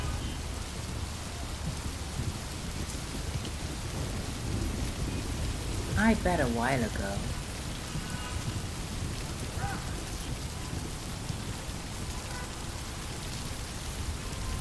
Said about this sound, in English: So, when was the last time you just slowed down and listened to the rain?